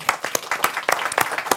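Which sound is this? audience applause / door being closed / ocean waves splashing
audience applause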